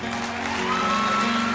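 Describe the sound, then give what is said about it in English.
An audience claps their hands for a singer who has just sung, in a dense, steady wash of applause that holds at an even loudness throughout, with a faint constant hum running underneath. “But yeah, so clap your hands for Mary.”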